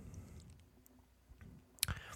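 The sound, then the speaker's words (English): A quiet sip of watermelon sour beer: soft mouth noises lead to a single sharp click near the end, followed by a brief low gulp, with no talking. “And then take another sip.”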